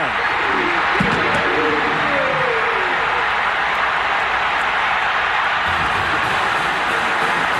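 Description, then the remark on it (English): A stadium crowd screams and roars after a 30-yard BYU Cougars touchdown against Utah in a conference championship game, a dense, loud, unbroken wall of cheering, with a few high-pitched shrieks cutting through in the first seconds. “You can hear me right there. You know, screaming really high-pitched.”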